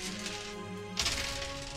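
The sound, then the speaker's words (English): During a tabletop role-playing game session, dice are dropped and clatter onto a hard table about halfway through, a sharp burst of small rattling knocks that settles into faint skittering over a steady low background hum. “Sorry. I dropped my dice!”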